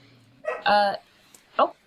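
A female dog barks: a drawn-out, strained yelp followed a moment later by a second short, sharp bark, with nothing else around them.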